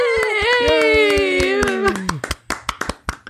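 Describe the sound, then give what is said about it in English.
Steady, brisk hand clapping from an audience, with sharp, evenly spaced claps, at first under a long held voice that slowly falls in pitch, then continuing alone and slightly uneven. “I can tell that half of you are giving me pity claps and half of them are sincere claps.”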